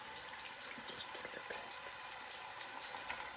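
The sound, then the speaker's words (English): Steady sizzling and crackling as patted-dry chicken pieces start frying in a hot pan, a dense hiss peppered with small pops, fairly quiet and continuous throughout with no voices. “So I'm just adding in all the chicken. Whoops! I just dropped a couple of pieces. That's nice. Okay. And I can hear that it's starting to sizzle.”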